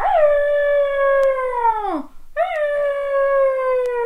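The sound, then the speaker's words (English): A voice imitates an elephant trumpeting with two long, loud, sustained calls, each sliding downward in pitch, separated by a short pause, with no talking. “What a lot of loud elephants you are.”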